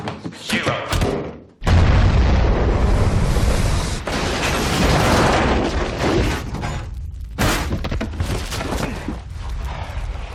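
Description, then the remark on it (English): A massive nuclear explosion sound effect erupts abruptly after a brief quiet moment, then rolls into a long, deep roaring rumble that persists for several seconds, briefly dipping before crackling on at a lower level. “Nor does the fridge need to be nuked.”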